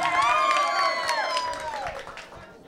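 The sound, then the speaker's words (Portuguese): A crowd applauds loudly with scattered clapping, mixed with cheering voices and high whistles, fading slightly toward the end. “Quem gostou pode aplaudir aí.”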